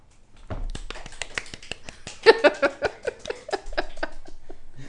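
A light golf clap: a steady run of soft, crisp hand claps at a brisk, even pace, briefly a little louder in the middle, with no voices.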